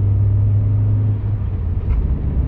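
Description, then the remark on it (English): A loud, steady low engine rumble from a truck passing a moving taxi, its tone shifting partway through as it moves past, with continuous road noise and no voices. “Oh, there's a truck again.”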